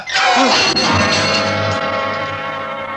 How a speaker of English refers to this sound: And then I yanked at the work light, lifted it high, and with all my strength brought it crashing down on his head.